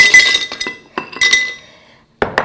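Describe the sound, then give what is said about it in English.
Ice cubes clatter into a blender jar to make a cold drink, in a series of sharp, glassy clinks, a dense tumble at first, then a few scattered knocks, a pause, and two final bright clinks. “So I'm going to start with some ice because we want this drink to be cold.”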